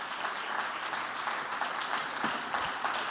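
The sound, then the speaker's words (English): An audience claps their hands to thank God, in a steady, dense wash of applause lasting a few seconds, many overlapping claps at an even, moderately loud level with no voices standing out. “If God's given you a job, I think you ought to clap your hands and thank God for it.”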